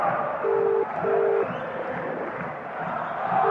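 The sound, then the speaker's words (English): A telephone ringback tone for an outgoing call to a pub in Preston: two steady electronic pulses in quick succession, then a pause before it repeats, heard over a noisy background of crowd murmur. “We're ringing a pub called the Sumner's Pub in Preston.”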